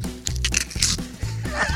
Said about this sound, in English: What it sounds like when you eat a little piece of the turkey.